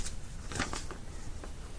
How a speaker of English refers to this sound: Sound of paper flipping.